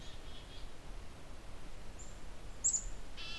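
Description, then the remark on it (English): A black-capped chickadee gives a few thin, high-pitched calls near the end, fairly faint against a steady hiss of outdoor background noise. “Black-capped chickadee behind me.”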